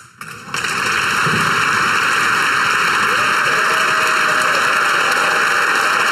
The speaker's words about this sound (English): For those of you listening to this, this is the Canadian Parliament giving a round of applause. A standing ovation. A standing ovation, yes. In fact, we cut the sound of that because this ovation goes on for a while.